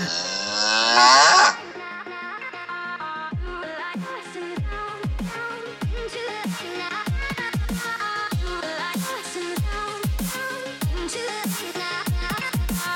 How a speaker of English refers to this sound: There's no beat, it's just a singular moo.